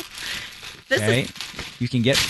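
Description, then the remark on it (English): A harsh, steady ripping of silver duct tape and wrapping paper for about a second as a gift wrapped in duct tape over tissue paper is torn open, followed by a person talking while more crinkling and tearing continues underneath. “You still wrapped all these individual items with duct tape.”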